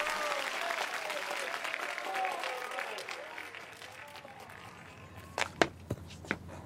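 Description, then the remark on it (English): A theatre audience applauds a stage play as the curtain comes down, in a dense, steady patter of clapping mixed with murmuring voices, gradually thinning out before a few sharp, separate knocks or footsteps at the end. “You're not applauding, Jean Brash.”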